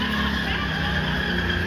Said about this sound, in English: Incredibly loud roaring engine sound.